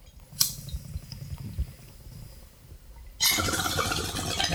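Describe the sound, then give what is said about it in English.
Bong water bubbles in a low, steady gurgle as the first hit is taken, for about three seconds after a brief sharp click, then a loud, broad airy rush takes over until the end. “The first hit is being taken.”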